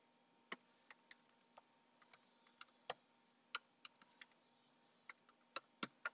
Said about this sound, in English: Let's go to Proverbs. Hold on, I'm typing the verse in.